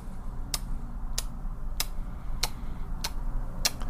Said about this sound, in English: It's just a matter of time. It's a ticking time clock.